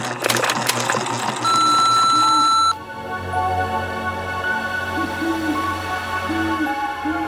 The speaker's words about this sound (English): Now, prepare yourself, for the beep waits for no one.